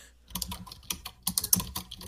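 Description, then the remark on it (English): Rapid, uneven bursts of furious, clattering keystrokes on a computer keyboard, fairly loud, with dense clusters of clicks and brief pauses, no voices. “He is typing furiously over there.”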